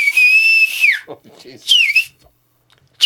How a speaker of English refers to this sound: Third way is the loud lip whistle, which is stand back. That's the one.